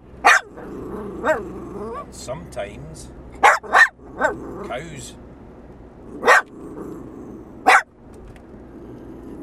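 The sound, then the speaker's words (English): A dog, Skid, lets out a series of sharp, loud barks at irregular intervals, about six in all, reacting to mention of the farmer's field, with a person speaking in between and a low growl underneath. “So as soon as you mention the farmer's field, you get a reaction.”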